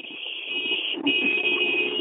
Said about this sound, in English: Whoa, yeah, I'm in traffic. I was getting honked at.